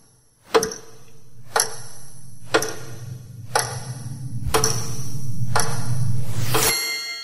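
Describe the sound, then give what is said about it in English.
A timer clock ticks in sharp, evenly spaced clicks about once per second, while a low droning tone swells underneath and ends abruptly after a brief rising sweep. “Heads down and your timer starts now.”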